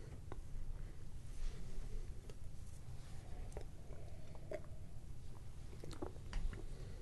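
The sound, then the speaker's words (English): Quiet sips of rye beer at about 54 degrees from a glass, with soft wet mouth noises and a few small clicks and swallows over a low background hum; no one speaks. “The first sip kind of seemed a bit closed off.”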